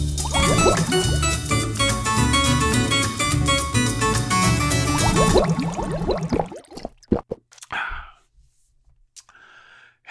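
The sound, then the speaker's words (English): A burst of loud music cuts off, followed by a few sharp clinks and a short hissing, splashing pour as an ice-cold drink is poured into a glass in a break room. “I need something ice cold to drink.”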